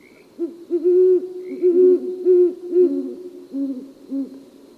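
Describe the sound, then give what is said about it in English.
A female and male pair of great horned owls trade deep, rhythmic, syncopated hoots at night in an overlapping courtship duet, one voice slightly higher than the other, repeating steadily with no talking. “A female and male pair often join in a duet to begin their courtship.”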